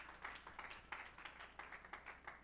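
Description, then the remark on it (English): An audience claps together to give God the glory, a steady, rhythmic beat of many hands blending into roughly three sharp claps per second. No voices stand out over the clapping. “Somebody clap your hands and give God the glory.”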